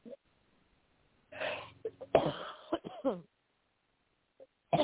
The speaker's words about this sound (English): You just take a deep breath and let whatever comes out of your mouth, get your brain out of it. It's not something you manufacture. Cough that out.